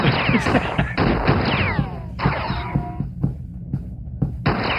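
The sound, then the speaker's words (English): Rapid bursts of video game gunfire as the player shoots everybody, with sharp repeated cracks and harsh, noisy blasts, broken by short gaps, loud and chaotic with no voices. “It's like person with gun and person without gun. Yeah. And I was just shooting everybody.”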